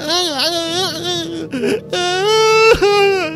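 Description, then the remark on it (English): An old woman's anguished scream from inside a cabin with a flickering light and its door off: a loud, sustained, wavering wail with a brief catch partway through, then rising again into a strained, drawn-out cry. Nobody talks. “And inside you hear a terrible scream, an anguish scream, but a very, like, elderly scream, like the scream of an old woman.”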